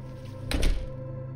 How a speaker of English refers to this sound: He throws me some awkward glance as he quickly snakes through the door and closes it behind him.